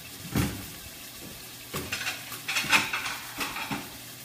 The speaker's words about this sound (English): And now that I've cleared up a little bit of space on the countertop, I'm going to get my plating plates out.